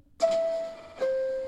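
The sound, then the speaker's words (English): A DJ's chime drop sample: a two-note chime, a clear, sustained tone followed by a slightly lower second note, each ringing out smoothly, like a transit or doorbell ding-dong, with no voices. “I got the chime, so I can drop that.”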